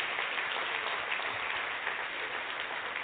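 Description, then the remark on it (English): A crowd claps steadily for the parents present, a dense, crackling wash of many hands at an even loudness for about three seconds, with no voices. “Now, the whole audience, let's give them a round of applause, because being a parent is no small thing.”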